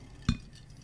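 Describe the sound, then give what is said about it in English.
A single quick clink of glasses of a pink drink touching in a toast, fairly crisp, with a soft knock beneath it, then quiet room tone with no talking. “It's beautiful. It's pink. Cheers.”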